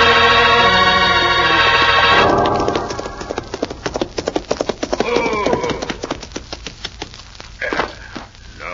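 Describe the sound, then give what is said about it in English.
After a short swell of music, horses' hooves clip-clop in a steady, brisk rhythm, loud, with what sounds like a brief whinny partway through, as Cisco and Pancho ride back to Senor Joe's store. “We'll get our horses and ride back to Senor Joe's store.”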